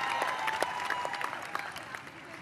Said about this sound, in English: First and foremost, my teammates. Just shout out to the teammate. Just let everybody give them a clap.